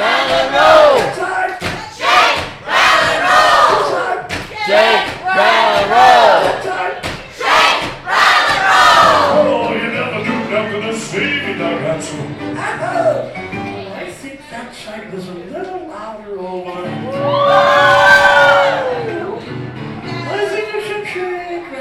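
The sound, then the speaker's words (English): People on one side of a room jump up in a noise contest and erupt into loud, sustained yelling and cheering, waving their arms, voices overlapping in a chaotic roar with bursts of shouts and thumps, swelling again toward the end. “Everybody on this side of the room jumped up and started yelling, waving their arms in the air.”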